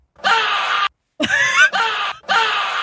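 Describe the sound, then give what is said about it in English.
A person screams in rage over League of Legends in loud, strained bursts, one long cry, a short pause, then three more harsh yells in quick succession, raw, with no talking. “Yeah, that's me screaming.”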